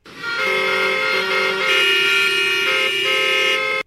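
Car horns blare loudly and continuously for a few seconds, several overlapping tones holding steady with a slight shift midway, like honking in congested street traffic. No one speaks.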